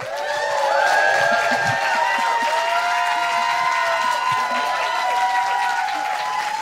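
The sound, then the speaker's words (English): An audience claps and cheers in a steady, dense roar that keeps up throughout, with high whoops and whistles rising and falling above the applause. “Some of y'all didn't want to clap for porn earlier, but we're clapping now, so you went from beginner to advanced real quick.”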